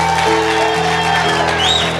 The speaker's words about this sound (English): and it's her first time to Alaska, so put your best hand clap together to welcome her.